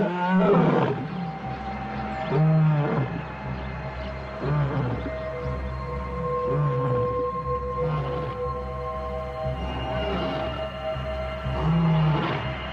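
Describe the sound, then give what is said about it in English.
A lion roars in a long series of deep, powerful grunting calls, repeating every couple of seconds, loud with no talking. “A lion's roar can be louder than a jackhammer.”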